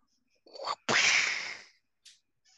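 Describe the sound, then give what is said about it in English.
A quick swishing whoosh leads into one sharp, loud whip crack that rings out and fades over about a second, followed by a faint brief rustle, as a whip is tested before being used in combat. “So once it locks out, Cori takes a step back because you have to make sure the whip works before you use it in combat.”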